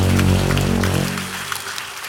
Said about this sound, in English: Hallelujah. Bless the name of the Lord. Come on, clap your hands to the name of the Lord.